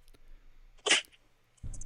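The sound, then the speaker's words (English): A single sharp, harsh cough, from something going down the wrong way, bursts out on its own, lasting a fraction of a second, then a low rumbling noise starts up afterward. “I got a cough. Hold on. Something went down wrong.”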